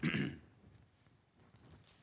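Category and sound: human body sound, cough and throat clearing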